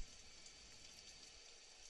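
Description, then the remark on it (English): Steady rain hisses softly and evenly throughout, a quiet continuous patter with no voices and no breaks. “It's gonna rain for hours.”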